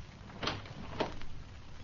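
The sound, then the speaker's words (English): A door being opened: a muffled latch click followed half a second later by a second dull knock as it swings, over a low steady hum with no voices. “Open that door.”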